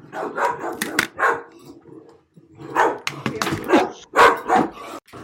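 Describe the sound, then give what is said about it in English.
A dog barks furiously in rapid, loud bursts, sharp barks mixed with higher yelps, pausing briefly midway before starting up again just as frantically. “It's like Cujo.”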